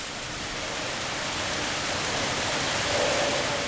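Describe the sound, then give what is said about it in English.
A steady, dense roar of rushing water from a waterfall pouring out of a tunnel, filling the whole clip with an unbroken hiss and no voices. “Everybody else already knows about this place because the waterfall comes out of the time tunnel. Like, I can see the tunnel entrance while I'm recording the water.”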